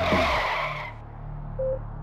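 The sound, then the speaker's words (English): Tires screech loudly for about a second as a Suburban SUV is floored and tears off toward Cedars-Sinai Hospital, then a steady low engine rumble carries on after the squeal cuts out. “Puff's driver put the truck in gear and floored it in the direction of nearby Cedars-Sinai Hospital.”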